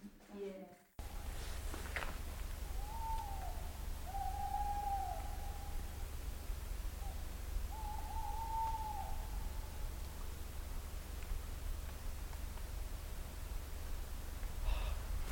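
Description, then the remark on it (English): Two owls trade soft, wavering hoots back and forth, a few drawn-out calls spaced a second or two apart, over a steady low background rumble. “A magical owl duet.”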